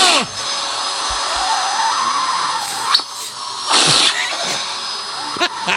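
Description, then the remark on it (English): A vacuum pump device with a man's penis inside runs steadily throughout, a constant high motor whine with brief surges of hissing air partway through, loud. “That's his meat inside a vacuum.”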